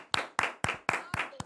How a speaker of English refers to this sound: Round of applause for mom, y'all. Come on, y'all.